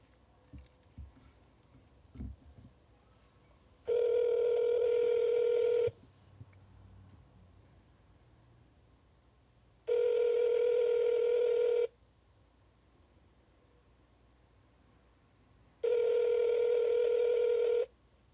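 A phone line rings on an outgoing call to the caller's sister: three steady, two-second ringback tones separated by regular pauses, clear, with faint handling clicks at the start and no talking.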